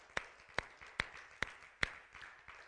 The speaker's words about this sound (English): If you're thankful to God for that, let's give him a hand clap.